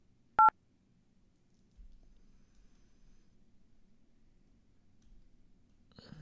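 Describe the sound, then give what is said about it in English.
A single short, sharp touch-tone keypad beep as an extension is dialed on a company's automated phone line, then the line settles into a quiet, low hum with a faint click at the end. “If you know the extension of the party you are trying to reach, you may dial it at any time.”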